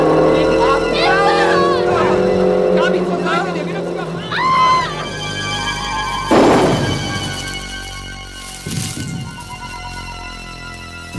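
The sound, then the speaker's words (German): A car engine roars, its pitch rising and falling as the car speeds, weaving and far too fast, straight toward people on bicycles, with sharp noisy bursts midway and again near the end. “der Mistkerl ist volle Pulle auf uns zugerast”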